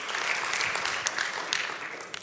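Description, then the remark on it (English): A crowd applauds steadily at news that a woman's schooling is fully paid for, a dense wash of many hands clapping at once with no pauses, moderately loud, sustained from start to finish. “And then, yeah, we can clap for that.”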